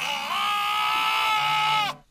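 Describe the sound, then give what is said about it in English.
A lamb bleats in one long, wavering, high-pitched cry lasting about two seconds, loud and strained, then cuts off abruptly. “It is a bleating lamb.”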